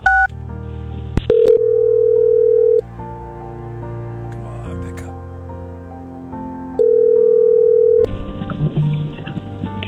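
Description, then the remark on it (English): Quick touch-tone dialing beeps as a woman is called on the phone, then the line rings: two long, steady ring tones separated by a pause, over a low musical bed, with no one talking. “Let me call her. Let's see if we can surprise her and get her on the phone here, too, this morning.”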